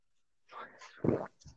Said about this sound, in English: I need a sip of water for my dry mouth. I hope you'll enjoy the sound of me drinking. You'll hope you enjoy the sound of him absorbing.